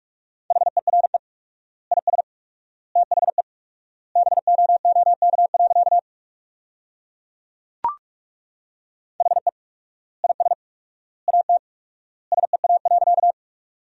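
Rapid Morse code beeps on a single steady mid-pitched tone, sending sentences at 45 words per minute with four-times word spacing, keyed in quick clusters of dots and dashes separated by short pauses, with one brief click partway through and no voices.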